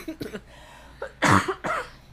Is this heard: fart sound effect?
no